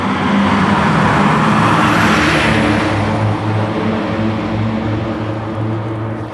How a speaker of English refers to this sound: Trash truck coming. Watch your ears.